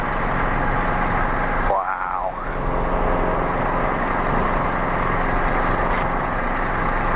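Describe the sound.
A Guimbal Cabri G2 helicopter engine runs with a loud, steady droning hum during a flight at Smith Field. The noise briefly dips and warbles once, and a single short voice exclamation is heard over it.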